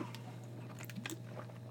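Soft mouth sounds of someone sipping water, a few quiet wet clicks and gulps over a steady low hum, with no talking.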